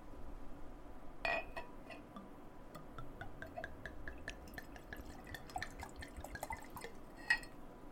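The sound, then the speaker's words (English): Dark red blend wine from a freshly opened bottle trickles quietly into a glass, a patter of small splashes and drips with light glassy clinks scattered throughout and a sharper clink near the start and end. “I'm gonna give it a little pour here.”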